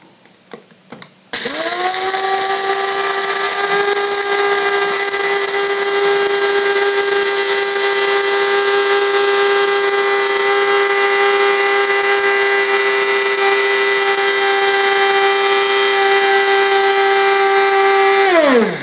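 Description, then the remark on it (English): A few light clicks, then an electric coffee grinder roars to life with a loud, steady high-pitched motor whine and gritty hiss that runs unbroken for about seventeen seconds. “But now I'm going to grind this for 15 seconds.”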